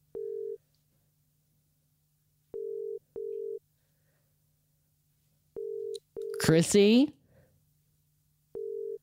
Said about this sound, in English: I'm calling up Chris Hansen now